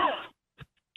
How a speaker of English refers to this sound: Besides coughing.